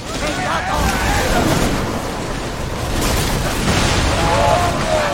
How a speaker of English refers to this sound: So whenever you do a hard turn with the boat, all the water is pushing through the side, basically splashing all over.